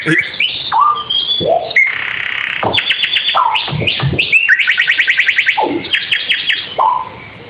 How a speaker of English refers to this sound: What? That's a synthesizer bird, right? I was going to say that's like the drum track.